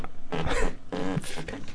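A desk chair squeaks and grinds against a desk in a few rough, creaky bursts with a low, buzzing, almost flatulent tone, fairly loud with short gaps between.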